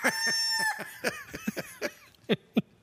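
A rooster lets out a loud crow that ends abruptly, followed by a quick series of sharp, rhythmic clucks and squawks with no talking over it.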